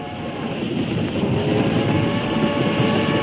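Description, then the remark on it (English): A train rumbles steadily along railroad tracks, a dense low roar with a faint rattling texture, building slightly in loudness and continuing without pause, with no voices present. “The lights from the windows of our train shine on it.”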